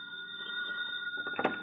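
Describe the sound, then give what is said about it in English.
A telephone rings with a steady, bright electronic tone as an FBI agent phones the agent in charge of the San Francisco FBI bureau, then a short clatter near the end, like the receiver being lifted. No one speaks. “And to add insult to injury, while it fretted over its watching and waiting, one of the FBI agents had reason to phone in to the agent in charge of the San Francisco Bureau.”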